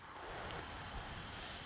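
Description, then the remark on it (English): A voice imitates ocean waves with a steady, breathy hiss, a soft continuous shushing that holds at an even level for under two seconds, with no talking. “That's the sound of the ocean.”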